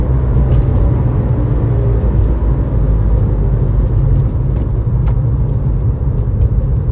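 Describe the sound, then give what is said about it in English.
A steady, loud engine drone from a sports car driving on a slightly curvy road, deep low rumble holding constant throughout with faint road noise and no voices. “Like the engine sounds, the inputs, like just everything.”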